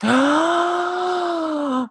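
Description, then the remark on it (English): A person lets out a loud gasp that stretches into a steady, voiced 'ooh' for nearly two seconds, alone with no other talk. “I just gasped. I am gasping.”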